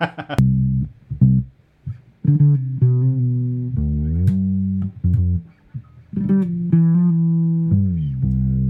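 A cheap bass guitar being tried out plays alone: a short phrase of sustained low notes, with several smooth pitch glides between them and brief gaps between phrases, at a steady moderate volume.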